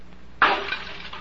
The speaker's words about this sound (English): Did that help, smashing the glass?